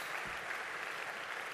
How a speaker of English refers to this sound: Yeah, well, you can clap. Great. I wasn't expecting that, but thanks.